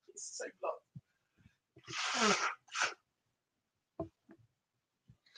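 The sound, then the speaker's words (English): A person with a blocked nose blows it: one forceful, rushing blow lasting about half a second, surrounded by a few short sniffs and snorts, with no talking. “Excuse me, I need to blow my nose.”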